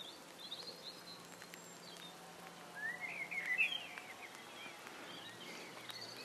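Light, steady rain falls outdoors in a graveyard, a soft continuous patter with faint scattered drips, while a bird chirps briefly midway through. No one speaks.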